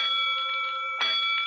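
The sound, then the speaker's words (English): A call bell at fire headquarters rings loudly, a sustained metallic clanging with sharp renewed strikes every half second or so, heard alone without any voices. It is sounding the third alarm, from Box 3-2 at Clark and Montague in the warehouse district. “He's all ready to report to Three Ones at 4 o'clock sharp for duty with the 2nd platoon when suddenly the call bell at headquarters begins to ring.”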